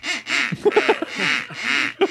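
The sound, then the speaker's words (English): A duck whistle quacks in a run of nasal, raspy blasts, a few long ones broken by a quick stuttering trio of short quacks, loud, with no talking. “Is it someone with a duck whistle?”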